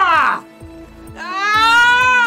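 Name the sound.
man screaming in pain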